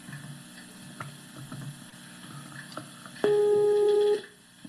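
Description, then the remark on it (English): A Skype call's dialing tone: after some quiet, soft rustling background, a single loud, steady electronic beep rings out for about a second near the end, then cuts off. “I was calling on Skype.”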